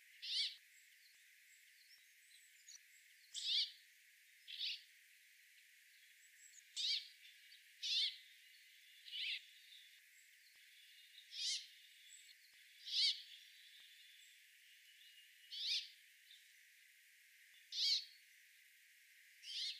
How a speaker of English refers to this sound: The brambling's wheezy song is similar to that of the greenfinch. It is a chuck-chuck sound, followed by a rasping zweek. It sounds a bit like the bird is saying bubble and squeak.